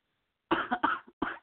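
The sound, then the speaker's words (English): A series of deep, chesty coughs from a person in Texas, three or four harsh bursts in quick succession after a brief silence, with no talking. “Can you hear that? Deep cough.”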